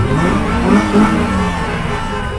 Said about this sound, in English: As the caravan made its way across the city, people pulled over on the highway to cheer it on. The horns and the engines were deafening.